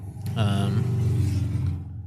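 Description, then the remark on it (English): A car rumbles past, its low engine drone swelling and holding steady for a couple of seconds before fading, with no talking over it. “I know there's cars in the background and waves and...”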